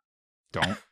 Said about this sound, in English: I just was clearing my throat in preparation for our discussion on ….